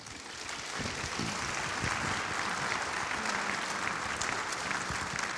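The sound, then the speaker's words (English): A crowd applauds steadily, a dense wash of many hands clapping at an even level that swells in over the first moment and holds without letup. No one speaks over it. “And they never clap when I get through preaching, so you should take that as a compliment.”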